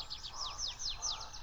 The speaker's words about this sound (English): Watch me puff out my throat like a great white bubble as I whistle my drit, drit.